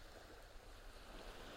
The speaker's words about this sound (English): The fog is very thick and swirling around the island. You cannot see the ocean, but you can hear it.